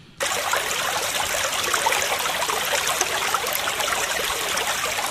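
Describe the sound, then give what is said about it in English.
A creek flows steadily, a continuous bright rush and trickle of water that starts abruptly and holds an even level throughout, with no voices. “Before leaving, I scrubbed myself clean in the creek and received my first pair of trousers.”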